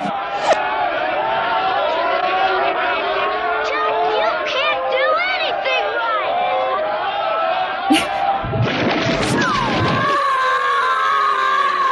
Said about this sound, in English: And, well, because it was in a bunch of crowd noise, and it happened twice. So I definitely thought I was having an aneurysm, but here it is reversed.